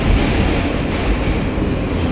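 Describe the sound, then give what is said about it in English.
Loud, dense train rumble with rattling, clattering wheels and a busy, agitated churn of noise, sustained throughout without any talking. “However, the next two train ambiences will be implemented within our beat. A spaz train.”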